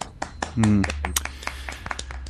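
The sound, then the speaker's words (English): Brief applause from a small group, quick irregular hand claps rattling along steadily for a couple of seconds, with a voice briefly rising over them near the start. “Congratulations. Round of applause.”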